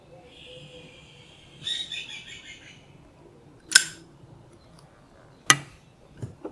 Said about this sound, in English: Maybe the birds' noises.